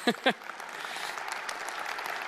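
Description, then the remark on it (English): An audience at a church in Montreal breaks into steady applause, a dense wash of many hands clapping, sustained at a moderate level after two brief voiced sounds at the very start. “In 10 years of Montreal, no one's ever clapped before.”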